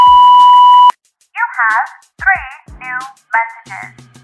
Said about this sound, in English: All right, now go ahead and leave your question at the sound of the beep.